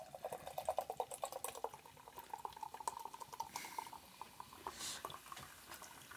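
Canada Dry ginger ale is poured into a cup, a steady gurgling stream topped by crackling, fizzy bubbles that keep popping as the pour tapers off. No one speaks.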